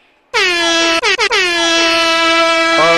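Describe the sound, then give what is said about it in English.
A loud air horn sound effect, played as a salute to Missy Elliott, blares in a rapid series of short blasts, then holds a long sustained note with a bright, brassy tone, with no talking. “Hit her with the air horns, man.”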